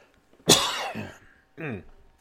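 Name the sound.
coughing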